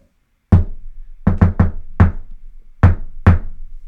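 knocking on a door

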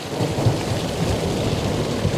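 thunderstorm with rain

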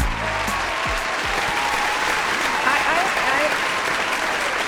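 applause

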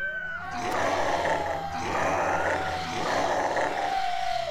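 monster roar

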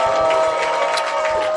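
audience clapping hands

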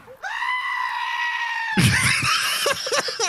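goat screaming

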